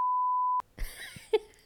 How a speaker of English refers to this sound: Yes. Please just bleep that.